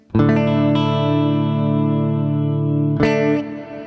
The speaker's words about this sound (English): Let me play a little bit for you now with the Cloudburst. It's just a completely different kind of reverb, and it's you'll see why it's called ambient here.